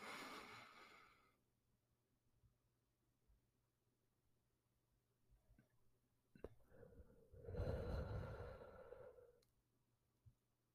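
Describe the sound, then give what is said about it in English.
Deep breathing with no talking, in through the nose and out through the mouth: a soft breath at the start, a quiet pause, then a faint inhale followed by a long, loud, whooshing exhale that fades away. “Okay, here we go with the breathing. You're going to go in through your nose and out through your mouth.”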